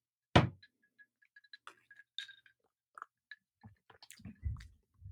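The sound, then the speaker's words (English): A sharp clink opens into soft fizzy crackling from a carbonated hot-sauce Pepsi, followed by a few wet slurping sips and swallows near the end, with no talking. “Small sip at first. Oh, fatty sip by … over here.”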